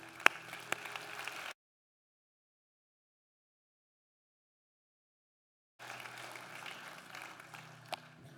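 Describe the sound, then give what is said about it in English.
A church audience claps after a prayer in a steady, dense wash of applause that breaks off abruptly, falls completely silent for several seconds, then resumes at a similar moderate level. “We can clap.”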